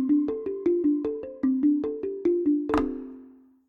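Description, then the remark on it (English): A smartphone notification alert plays a quick, evenly paced run of about a dozen bright electronic chime notes, ending on a fuller ringing tone that fades out. It sounds clear, with no talking. “So it picks up and connects to my phone. Tell me, hey, you need to drink some water, this and that.”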